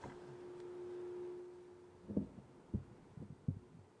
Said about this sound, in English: I'm getting a bit of hum there.